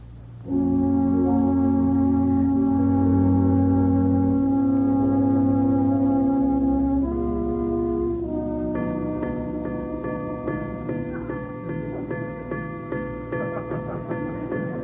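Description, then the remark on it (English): A clock's chimes: deep, sustained chiming tones ring out in a slow melody, then give way to a series of steady, repeated strikes that keep sounding one after another, striking fifteen o'clock, with no voices. “I thought you fixed the chimes.”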